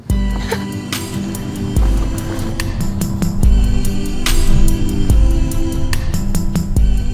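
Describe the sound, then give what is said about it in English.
Loud, continuous city traffic on a busy street at Plaza de la Cebada in La Latina, Madrid, Spain: deep engine rumble from passing taxis and buses, with bikes, sharp clanks and bursts of noise cutting through. “Suddenly there are loads of taxis, buses, bikes. The noise hits you all at once.”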